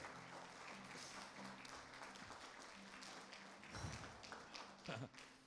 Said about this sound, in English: Let's give our God a hand clap.